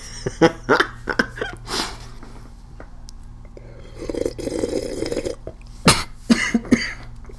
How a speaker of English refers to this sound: You want to start coughing?